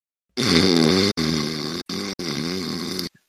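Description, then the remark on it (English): A voice imitates the snoring of a character heard on the other side of a door, with a rough, rattling, low-pitched snore that wavers in pitch and breaks into four steady, fairly loud bursts with short gaps, lasting about three seconds. “You can hear him snoring on the other side.”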